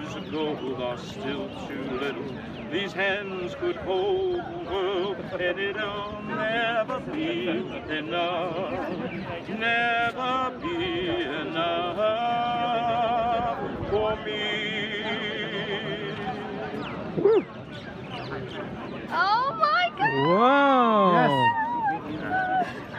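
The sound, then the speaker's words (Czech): Senator Bob Menendez sings to his future wife Nadine: a wavering, melodic line for about twenty seconds at steady loudness, his voice sliding up and down in pitch and ending with a few dramatic swooping notes. “To, co jste právě slyšeli, byl přímo Bob Menendez, zpívající své budoucí ženě Nadine.”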